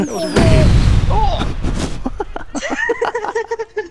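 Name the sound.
fireworks exploding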